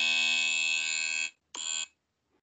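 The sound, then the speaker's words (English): A loud, harsh game show buzzer, an actual buzzer device, blares alone: one long sustained blast, a brief pause, then a second shorter blast. “Oh my god, he got an actual buzzer.”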